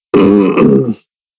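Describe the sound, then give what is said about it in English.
A dog snoring, one loud, throaty grunting snore lasting about a second, followed by silence, with no talking. “As my baby of a dog is over here snoring up a storm.”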